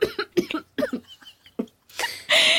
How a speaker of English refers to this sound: Oh, she did a fake cough and it set off like some real coughs.